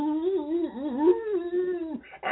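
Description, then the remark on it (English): An old hound dog lying on a nail on a farmhouse porch in the rural countryside lets out a single long, mournful howl of pain that wavers up and down in pitch for about two seconds, fairly loud, before breaking off into a short burst of noise. “The dog is howling in pain.”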